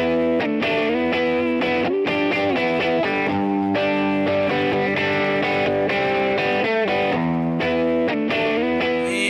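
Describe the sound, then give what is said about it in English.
Intro music with distorted, effects-laden tones plays at a steady, fairly loud level, with dense sustained chords and sharp rhythmic hits, then fades out. No one speaks. “And there's the fade.”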